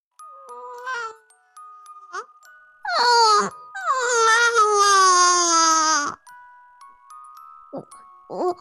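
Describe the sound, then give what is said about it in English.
A newborn baby, portrayed as Ruth Joan Bader at her birth in 1933, cries in a hospital: a few short, choppy whimpers, then a loud, sustained wail that breaks off abruptly, followed by faint, fading cries. “Ruth Joan Bader was born on March 15, 1933, and we can only assume that she was the only baby ever born whose infant cry was actually a cry for justice.”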